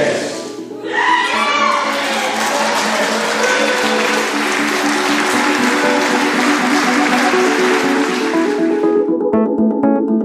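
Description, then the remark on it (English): Loud, sustained applause and cheering from a large crowd in a parliament chamber as the British Sign Language (Scotland) Bill motion is agreed, with shouting voices mixed into dense clapping that swells quickly, holds for several seconds, then tapers off near the end. “Watching the video, hearing all the applause and cheering, seeing the enthusiasm on people's faces, the rotating hands indicating applause, it still moves me to this day.”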